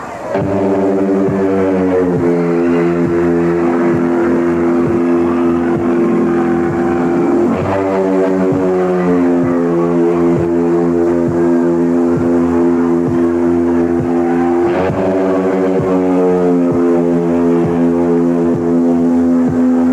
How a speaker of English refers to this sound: listen to the Road Warrior music as they come out to defeat Mac and Jim Jeffers. I believe this is from 1986, maybe 87, but or maybe 85. Here it is. Actually, 85 now that I think about it. Here it is. As we await the entrance now of the Road Warrior.